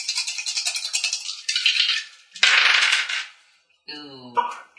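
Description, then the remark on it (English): Dice rattle rapidly, as if shaken in a cup, then clatter across a hard table in a couple of loud bursts before settling, rolled for an athletics check in a game. A brief tonal, voice-like sound follows at the end. “Roll a gym dice. There you go.”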